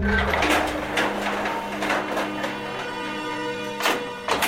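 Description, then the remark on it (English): A steady mechanical hum with low motor tones runs throughout, punctuated by a few sharp clunks and a louder thud near the end, as the elevator doors shut and the car begins to descend. “Doors closed. Going down.”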